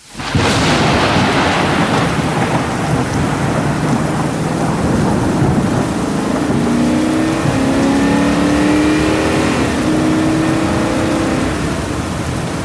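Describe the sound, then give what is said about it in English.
A heavy thunderstorm roars with steady pouring rain on flooding roads and a loud rumble of thunder near the start, while a car engine drones and revs as the car drives through the downpour. “The storm is a-raging. The roads are a-flooding.”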